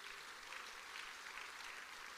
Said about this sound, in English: Are we together, Bazalwane? Give a round of applause unto the Lord.